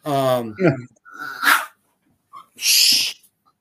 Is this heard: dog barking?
yes